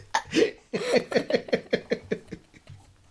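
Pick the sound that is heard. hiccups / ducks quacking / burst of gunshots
hiccups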